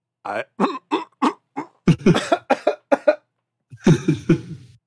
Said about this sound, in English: I had to cough away from my microphone.